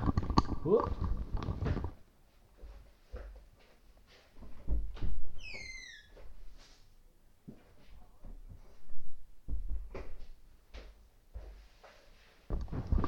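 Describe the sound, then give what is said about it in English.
A door is opened to let a dog in, with a few dull thumps and knocks, a brief high squeak in the middle, then scattered shuffling and bumps as it is handled and closed. “But hang on 1 minute, my dog is at the door. I'm gonna let my dog in.”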